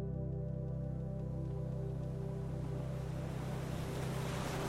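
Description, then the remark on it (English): Steady ocean waves in a sailing video game wash and surge continuously, with a low engine-like hum and faint wind underneath, a broad, even roar with no voices. “Okay, back to the sea.”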